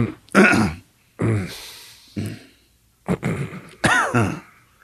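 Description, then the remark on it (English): A person coughs and clears their throat in a run of five harsh bursts spaced about a second apart, with brief quiet gaps between them and no talking. “don't cough when I'm answering your questions.”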